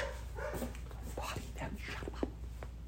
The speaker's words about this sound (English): That dog's been barking all night.